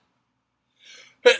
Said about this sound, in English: Sorry, I have a sneeze. I'll see if I can cut that out. If I haven't, if I forgot to cut that out, I apologize.